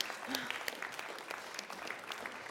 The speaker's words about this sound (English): Maybe you want to give her a clap. This lady works really, really hard.